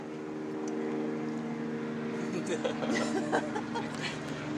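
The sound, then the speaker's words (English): A Los Angeles Police Department (LAPD) helicopter drones overhead, its steady rotor and engine hum filling the scene at a constant loud level, while faint murmuring voices break in toward the end. “We're now concluding this LAPD flyby.”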